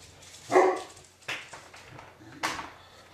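Dogs, a Mastiff and a Corgi, bark in three sharp, separate bursts, the first loudest, with softer barks following about a second apart against a quiet background.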